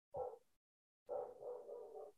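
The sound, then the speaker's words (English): A dog named Dodgers barks upstairs, muffled and not very loud: one short bark, a brief pause, then a longer run of rough, connected barking. No one speaks. “Yeah, I hear him barking.”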